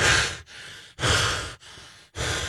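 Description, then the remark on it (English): A person breathes heavily and anxiously: five loud, rapid breaths alternating in and out with no words. The stressed panting is put on as part of a Mark Wahlberg impression. “So heavy breathing, few words at a time.”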